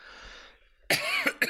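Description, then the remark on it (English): A loud cough bursts out after a moment of faint hiss, followed by two shorter coughs in quick succession, with no talking. “Of course, coughing again.”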